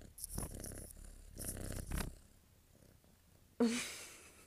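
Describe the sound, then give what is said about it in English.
A kitten named Miss Almond purrs in breathy, rumbling waves that swell and fade with each breath, then goes quiet before a brief, brighter rustling sound at the end. “Are you gonna purr for the people? Give the people a purr.”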